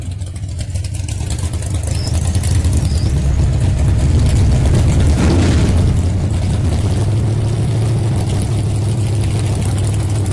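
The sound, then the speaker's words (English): A loud, deep race car engine rumbles steadily, with strong low-end throb and a brief surge in intensity midway, heard alone without any talking. “All you guys that have been, like myself, hanging around racetracks since we were kids, you know, that's a familiar sound right there.”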